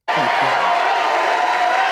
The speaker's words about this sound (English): So there's the announcement right there, if you didn't get to hear it. Crowd goes wild, as always. They're excited. They're excited.